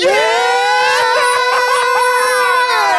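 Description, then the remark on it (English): A man lets out a loud, sustained high-pitched scream lasting about three seconds, its strained tone wavering slightly in pitch without a break, with no talking alongside it. “We laughed so hard in the car because this nigga screamed after he said, one thing you gotta know, I'm gonna be a nigga for life.”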